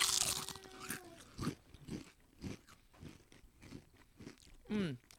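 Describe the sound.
Several people bite into crunchy chips at the same moment, a loud close burst of crunching, followed by a steady rhythm of chewing crunches with a few brief murmured voices.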